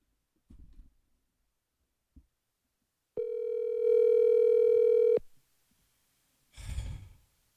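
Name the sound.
phone call ringing unanswered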